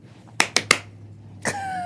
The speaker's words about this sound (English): Yeah, I thought there were four claps. You made me do five. No, there's four claps.